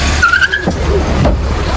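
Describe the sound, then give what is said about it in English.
A car peels out as the driver slams down the accelerator, with a brief high tire squeal over a steady low engine rumble, the skid lasting under a second amid continuous road noise. “You'll hear the car peel out, and then you'll hear the thump of her being hit.”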